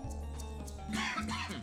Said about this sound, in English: I'm dealing with some kind of strange cough. People are telling me I have bronchitis and need a chest x-ray.